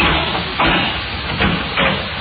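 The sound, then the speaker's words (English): An airtight door hisses open with a steady, rushing whoosh of escaping air that swells in a few brief surges over about two seconds, with no voices. “You see the door? Airtight. Airtight, yes, indeed. I'll open it.”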